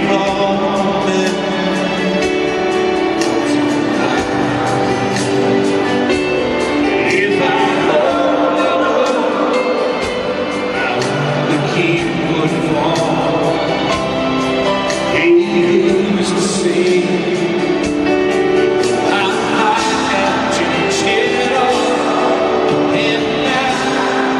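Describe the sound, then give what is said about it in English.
A large stadium crowd at a live concert in Las Vegas sings along with a song, many voices blending into a dense, steady wall of melody over the music, loud and continuous from start to finish. “Whole crowd sings along.”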